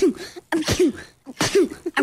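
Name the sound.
imitated sneeze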